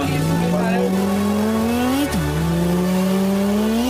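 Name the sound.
car driving and accelerating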